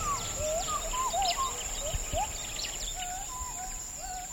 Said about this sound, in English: Where we've stopped, the forest is burnt away, most likely to make way for oil palm trees. In a distant stand of forest, we hear gibbons.